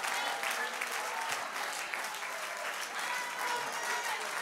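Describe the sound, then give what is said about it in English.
A standing audience claps hands unto the Lord in a dense, sustained burst of applause, steady and loud for several seconds with a bright, crackling texture and faint voices mixed in. “Somebody here today, if I've got a testimony in here, stand to your feet, clap your hands unto the Lord, magnify the name of Jesus.”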